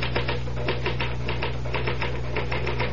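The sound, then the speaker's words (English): Steady, rapid mechanical typewriter keystrokes clatter in a continuous rhythm, with a low constant hum underneath and no voices. “Well, the truth is that the typewriter, or rather, Mr.”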